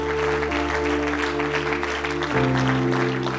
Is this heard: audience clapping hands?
yes